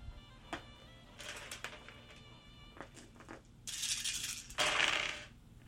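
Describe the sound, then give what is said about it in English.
Dice rattle and clatter across a hard tabletop, first a few scattered sharp clicks, then a louder, busier tumbling burst near the end, with no one speaking. “So I'll give you one stunt dice for that.”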